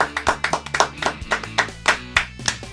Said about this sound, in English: Point at which we clap.